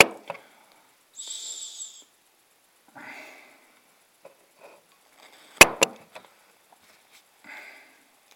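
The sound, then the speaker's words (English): Beer from a Pernican can hisses and fizzes as it is poured into a Wirral Beer Festival glass, in a few short, soft bursts of bright, airy noise, broken by a couple of sharp clinks of glass. No one speaks. “Oh, listen to the hiss on that.”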